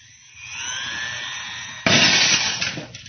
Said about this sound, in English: It's amazing. The glass was shattered.